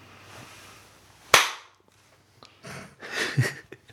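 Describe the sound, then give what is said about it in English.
One sharp, loud hand clap, made to sync video at the start of a recording, cracks out after a moment of quiet and decays quickly, followed by a few softer, breathy rustling noises. “You do a clap now and then we're good.”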